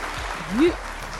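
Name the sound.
round of applause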